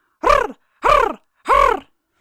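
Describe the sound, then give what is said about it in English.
A voice imitates a bird's harsh, grating call: a brief, rolling series of three rasping notes in a quick, evenly spaced series, loud, with no other sound around them. “And a brief, rolling series of harsh notes.”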